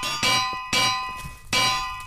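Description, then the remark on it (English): Three heavy anvils dropped on someone in quick, uneven succession, each landing with a loud metallic clang that rings on with bright, bell-like overtones before the next impact. “Why are anvils getting dropped on me?”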